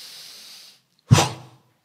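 A soft, steady hiss of breath fades out, then after a short pause comes one sharp, forceful exhale, a loud whoosh of air pushed out through the mouth to expel breath.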